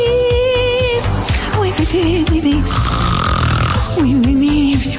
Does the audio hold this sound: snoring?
yes